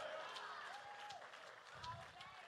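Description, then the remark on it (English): An audience claps and shouts together, scattered hand claps mixing with loud overlapping cheers and raised voices, lively and reverberant. “Somebody clap your hands and shout, it was God.”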